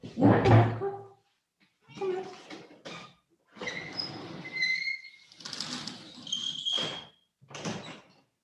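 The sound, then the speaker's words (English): A door is opened and then shut to let a cat outside, a series of scraping, rattling bursts with squeaky high tones and short pauses between them, ending with a closing thud. “I'm going to let her out.”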